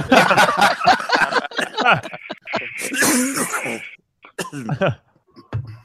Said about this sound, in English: Me coughing.